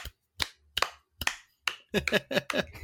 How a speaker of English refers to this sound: It's a song that carries a very weird message, but does it in such a cool and engaging way where you just, everyone who I've gone to, we all clap along.